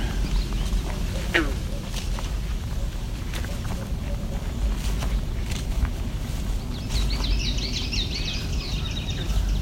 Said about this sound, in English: It's also a swamp sparrow, the more ringing sound in the background.